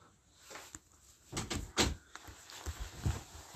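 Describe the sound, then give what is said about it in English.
A door swings shut with a couple of quick knocks and a solid thud, followed by a few softer bumps and shuffling. “Close the door.”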